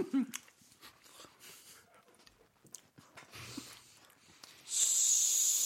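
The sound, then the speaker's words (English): A person imitates a snake with a sugar rush, with scattered breathy snorts and sniffs building into a loud, sustained hiss that fills the final second. “Followed by a snake with a sugar rush.”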